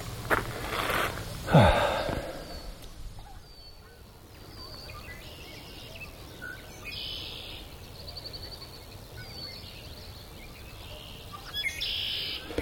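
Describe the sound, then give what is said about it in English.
Many wild birds of various kinds sing outdoors, with high chirps and short trills repeating, opening with a louder, harsh burst of calling before settling into steady, scattered birdsong over soft background ambience. “It's really pretty, just standing here listening to the birds.”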